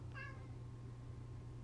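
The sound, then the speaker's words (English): A single short, high cat meow near the start, followed by a steady low background hum with no other sounds. “Kitty, kitty, kitty, kitty. Come here, kitty.”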